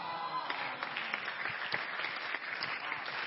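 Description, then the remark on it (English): Steady applause from a church audience after an announcement of ordering about 500 copies of the Makarios, a dense patter of many hands clapping at an even loudness throughout, with no voices standing out above it. “I don't know why you are clapping, because 500 means that all of you should buy it.”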